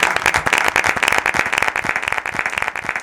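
A studio audience claps steadily, the dense patter of many hands keeping an even loudness throughout the three seconds, with no voices audible over it.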